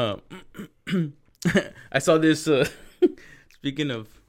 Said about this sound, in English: He's like, Hey, dude, I just coughed right now.